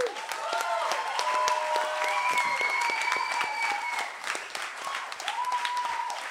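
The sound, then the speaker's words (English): An audience at a comedy show breaks into sustained applause for the performers, dense clapping at a steady loudness, with a few whoops and cheers rising above it. “Give all these fuckers a big round of applause.”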